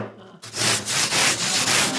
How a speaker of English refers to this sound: So you can work it, I wanted to show you that you can work this with woodworking. This is how I shape my bricks.